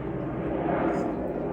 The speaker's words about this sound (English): These fucking planes, bro. Just 1 second, guys.